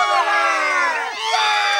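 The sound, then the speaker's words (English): A crowd of children shouting together in unison, a loud, sustained chorus of high voices that dips briefly and then surges again, the kids yelling that you have to do it over again if it isn't done fast enough within 60 seconds. “Like, he asked the kids, what happens if you don't do it fast enough within 60 seconds? And everyone yells, you gotta do it over again.”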